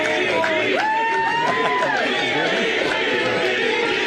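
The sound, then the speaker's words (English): A large crowd at a Trump campaign rally chants "VP" in reaction to Vivek Ramaswamy, many voices shouting together loudly and continuously in a rhythmic, sustained roar with rising and falling vocal tones throughout. “They're chanting VP.”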